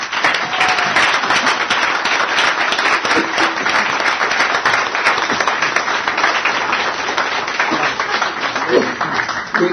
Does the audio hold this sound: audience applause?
yes